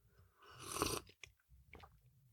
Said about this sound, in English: As we get rolling, let me take a sip of my favorite beverage.